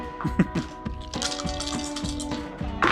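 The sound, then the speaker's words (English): Two dice, rolled at once for advantage in a game, clatter across a tabletop. They make a quick scatter of hard little clicks and knocks spread over a few seconds, over a faint steady background hum. “And not from the dice, because I was rolling 2 at once for advantage.”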